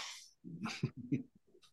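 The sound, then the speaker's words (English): A voice imitates heavy panting, as a character does at the end of a song: a breathy hiss followed by a quick series of loud, rough, voiced huffs in an uneven rhythm. “Yeah, and he does big panting at the end.”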